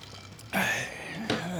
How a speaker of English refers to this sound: Yeah, hold on. Let me give it a little swig. You're going to need it. I'm taking a few gulps.